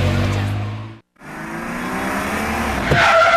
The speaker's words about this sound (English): Whoever just hit those brakes hard for no reason was definitely not you.